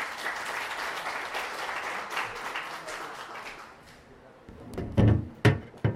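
An audience breaks into dense, steady applause welcoming a guest preacher, which gradually thins and fades after a few seconds, followed by several dull, heavy thumps.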